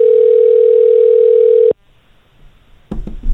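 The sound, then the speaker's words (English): A telephone ringing tone hums steadily for under two seconds while placing a call, then cuts off into near silence before a few short handling noises at the end. “No way he answers his phone now.”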